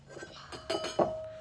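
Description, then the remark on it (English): Someone slurps the last of a root beer float through a straw: a few short, sputtering gurgles with a thin, steady whistling tone and faint glassy clinks, no voices. “Hey, I think you've reached the end of your root beer float there.”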